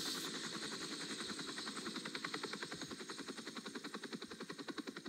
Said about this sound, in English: Sorry, I can't hear you. Chopper's way too loud.